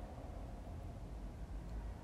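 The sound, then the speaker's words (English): A low, steady rumble of cars going by on a street outside, fairly quiet, with no single car clearly swelling past and no voices. “Cars going by.”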